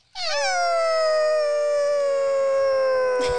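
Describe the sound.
A person imitates a dog howling like a wolf: one long, loud howl that rises briefly, then slowly slides down in pitch and holds steady for about three seconds, with no other sounds.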